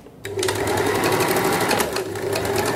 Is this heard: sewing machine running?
yes